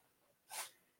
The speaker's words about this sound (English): Bless you.